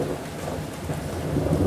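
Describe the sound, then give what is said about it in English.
Heavy rain pours steadily outside while deep thunder rumbles low, the storm swelling slightly toward the end, with no voices present. “I didn't realize at the time just how long Earl had been gone, as the storm seemed to intensify outside.”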